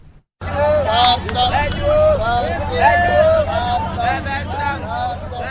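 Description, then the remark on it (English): A large crowd of hundreds shouts and yells continuously as two men are beaten at Mokolo, a popular neighborhood in Yaounde, Cameroon; many voices overlap into a loud, agitated roar with sharp cries rising above a steady low rumble. “Hundreds of people shout and watch helplessly as a crowd beat two men at Mokolo, a popular neighborhood in Cameroon's capital Yaounde.”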